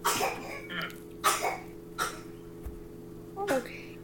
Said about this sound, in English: Okay. She fake coughs now, so she's just... Oh, was that a cough? Or, like, I was going to say, oh, is that a sneeze? Little sneeze? No, it's her coughing.